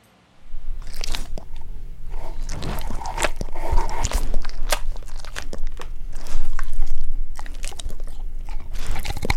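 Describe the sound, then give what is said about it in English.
A dog crunches and gnaws on a hard American Kennel Club Chewin' Bones bacon-flavored chew treat, with repeated sharp, crackly bites and wet chewing over a low background hum, no one speaking. “to feed my dog one of these American Kennel Club Chewin' Bones bacon-flavored dog treats.”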